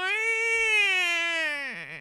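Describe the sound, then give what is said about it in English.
A voice imitates a baby's cry: one loud, sustained wail with a steady, fairly high pitch that wobbles and drops into a shaky sob near the end. “Is that a chicken giant baby?”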